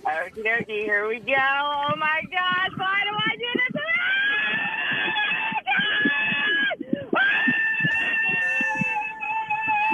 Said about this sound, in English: when you're ready, let her rip and give us your best roller coaster scream.